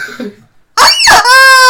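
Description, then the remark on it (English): A rubber chicken lets out a loud, rasping squawk: two harsh honking bursts, then a sustained nasal, high-pitched wail, all following a brief moment of near silence. “Rubber chicken, you have to execute your fucking story.”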